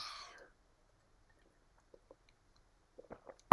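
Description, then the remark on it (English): A soft rustle, then near-silence broken by faint wet mouth clicks and a few small gulps as someone sips water, ending in a sharp louder swallow or clack. “Take a drink of water.”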